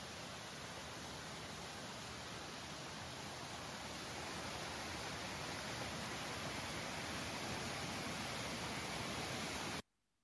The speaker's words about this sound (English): we did come to the waterfall, and there was no mistaking the energy and the movement of the water symbolizing the life of the Spirit.